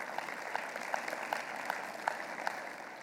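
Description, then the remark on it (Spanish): An audience applauds the Lord together, a dense, steady wash of many hands clapping with a few sharper claps popping out at a fairly even pace throughout. “De un aplauso al Señor.”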